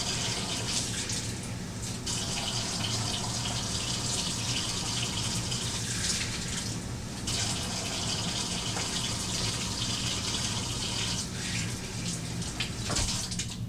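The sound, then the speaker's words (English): Cold water runs steadily from a tap into a half-cup measuring cup, measuring 2 cups of water for a scone mix used to make waffles, a continuous splashing gush that holds for the whole stretch with a few brief dips, and no one speaking. “Alright, 2 cups cold water.”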